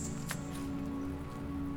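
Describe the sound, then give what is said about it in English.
Soft, steady rain falls outdoors on a fall day on Galiano Island during a deer harvesting workshop, heard faintly with a low continuous hum underneath and one brief tap near the start. No one speaks. “It was a beautiful, rainy fall day”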